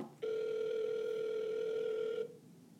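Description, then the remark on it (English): A single steady electronic ringback tone sounds for about two seconds on an outgoing phone call, clear and fairly loud, then cuts off into quiet line hiss. “If he answers the phone.”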